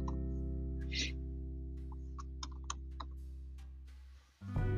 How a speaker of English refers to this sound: Sorry, if you hear typing, I'm trying to look at this book.